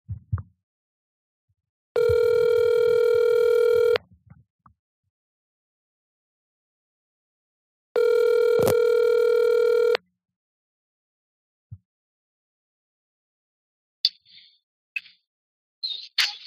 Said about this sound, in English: Let's see if she picks up the phone.